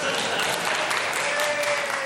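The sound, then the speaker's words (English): Steady, dense applause from an audience, many hands clapping at once in a continuous crackling wash that stays fairly loud throughout the short burst. “Yeah, round of applause.”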